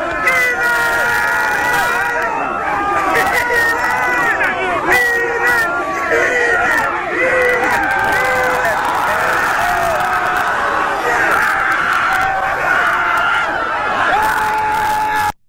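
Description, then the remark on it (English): A large crowd cheers and shouts together, cheering a man on, many voices rising into a rowdy, continuous roar that stays loud for the whole stretch before cutting off abruptly. “This is the crowd cheering him on.”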